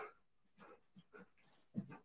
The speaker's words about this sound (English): my dogs are wrestling right next to me. They're literally wrestling.